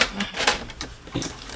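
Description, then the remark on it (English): A printer runs, giving off quick, uneven mechanical clatters and whirring bursts over a low background hum, with no one speaking. “It's a printer.”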